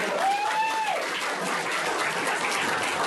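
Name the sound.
audience applause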